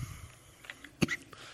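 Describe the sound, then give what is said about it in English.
A single short, sharp cough bursts out midway through otherwise quiet breathing, with a fainter catch of the throat right at the end. “Sorry, I'm not crying, I'm coughing.”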